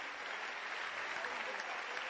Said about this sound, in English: Can you clap your hands for the man who is projecting the scriptures? He doesn't know his work, but still clap for him. Clap again for him.